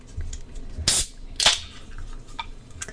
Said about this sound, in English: Yeah. Open a can of cider.